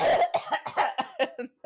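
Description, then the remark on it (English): A loud fit of coughing: a quick string of about eight harsh, rasping bursts in rapid succession, with no talking. “Yeah, like she just starts coughing after like a total normal delivery”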